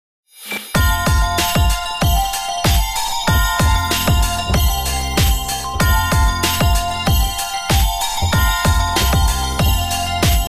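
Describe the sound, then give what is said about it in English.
A bright, festive Christmas iPhone ringtone jingle from Ringtone Feeder plays loud, with a steady bouncy beat, tinkling bell-like melody and thumping bass, running continuously for about ten seconds with no talking. “This holiday season, Ringtone Feeder wants to wish you a Merry Christmas with 24 new iPhone Christmas ringtones.”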